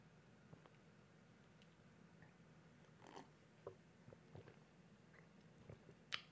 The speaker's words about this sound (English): I'll take another gulp. A gulp per topic. At this point, I'm just chugging a beer per topic.